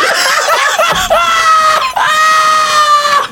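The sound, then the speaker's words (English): A person screams loudly into a microphone, two long, strained shrieks with a brief gasp between them, harsh and piercing throughout. “Was screaming in the mic.”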